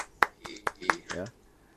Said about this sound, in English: Please give him a great welcoming applause.